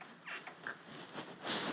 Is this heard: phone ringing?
no